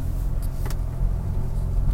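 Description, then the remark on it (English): A car's exhaust, opened up after shifting into sport drive mode, rumbles with a deep, steady low drone and a throaty edge, holding at an even volume, with a couple of brief faint clicks early on and no voices. “Sport, which we just shifted to, opens up the exhaust, gives you a little more aggressive throttle tip.”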